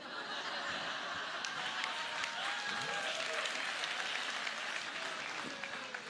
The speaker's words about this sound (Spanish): Y si hay alguno que no aplaude es porque no cocina.